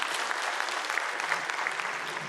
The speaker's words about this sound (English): Yeah, give yourselves a round of applause.